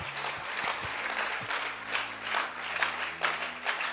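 Sustained applause from a sizable crowd at a church service, clapping for people who have just prayed to be saved, dense overlapping claps with a few louder bursts, steady for the full few seconds, with faint low tones underneath.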